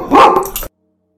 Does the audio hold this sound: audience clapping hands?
no